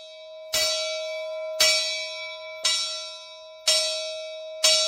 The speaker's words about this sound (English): At 8 o'clock, a bell announces breakfast.